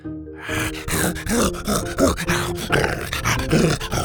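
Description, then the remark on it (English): An excited creature growls, a rough, rumbling string of pulsing growls and grunts that keeps going for several seconds, loud and unbroken, with no one speaking. “growled with excitement and tucked back behind the shrub.”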